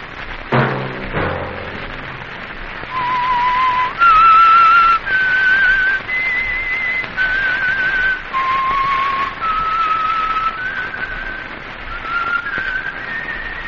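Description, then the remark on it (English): A lone whistled theme melody for a Signal Oil radio program, sustained, slightly wavering notes stepping up and down in a slow, haunting tune over a faint background hiss, with a brief musical flourish at the start. “Let that whistle be your signal for the Signal Oil program, The Whistler, each Sunday night at the same time”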